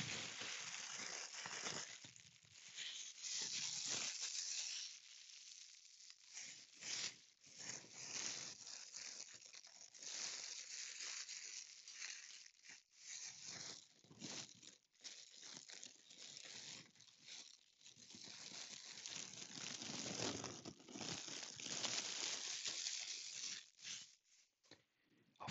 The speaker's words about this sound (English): Is that something? Oh, I have a plastic bag here.